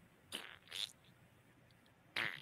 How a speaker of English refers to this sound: Fart noises are always funny.